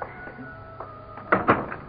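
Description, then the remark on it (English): A door is handled: after a quiet, humming stretch, a couple of dull clunks and a rattle come in quick succession as it opens and shuts, with no talking. “Let me get the door.”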